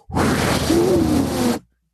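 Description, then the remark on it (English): A voice mimics a machine forcefully blowing air: one loud, sustained breathy whoosh lasting about a second and a half, with a faint voiced hum underneath, then an abrupt stop. “shouldn't be blowing air as if there's a fire.”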